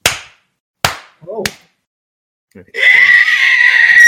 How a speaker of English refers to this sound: What do you mean, screech in the microphone? What do you want? Oh, I need to screech in the microphone because there's some seconds of silence. I guess I'll find them anyway.